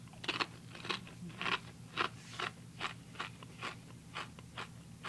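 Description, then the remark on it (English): Crisp crunching of a potato chip topped with America Whip being chewed, about a dozen bright crackly bites in a steady rhythm, with a low hum underneath and no talking. “Crunch is good too. ASMR.”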